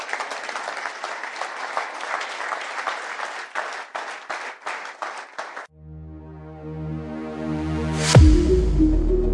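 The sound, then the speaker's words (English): A church audience claps their hands in dense, sustained applause for several seconds, then it cuts off and a swelling electronic tone with a sharp upward sweep takes over. “Clap your hands now.”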